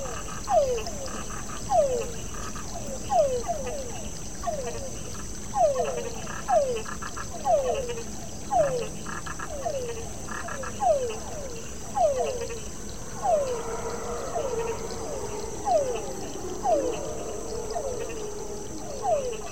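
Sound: frogs croaking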